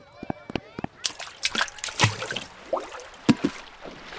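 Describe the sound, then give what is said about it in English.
Moving water of a lazy river sloshes and splashes in irregular bursts, gently flowing and lapping, with occasional louder slaps and faint voices in the background. “Your sure Quarium went on that lazy river?”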